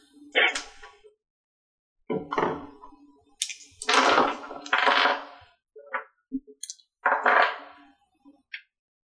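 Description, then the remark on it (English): Dice clatter onto a hard tabletop in several separate bursts, rattling and skittering briefly each time before settling, fairly loud, with short pauses between throws. “Just dropping dice everywhere.”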